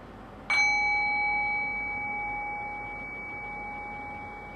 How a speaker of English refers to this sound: So I'll ring the bell and we'll begin. So it's meditation time.